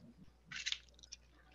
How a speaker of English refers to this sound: All right. Take a quick sip. Yeah.